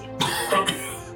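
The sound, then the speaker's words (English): A short cough made of a few rough bursts in quick succession, moderately loud, with no talking around it. “kind of coughs.”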